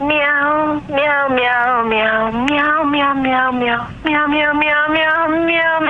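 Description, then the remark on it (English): A human voice sings in a long, wavering meow-like tone, imitating a cat with sustained, sliding pitch and brief breaks, loud throughout. “Meow.”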